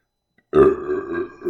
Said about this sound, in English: There's a good burp for you. Goodness.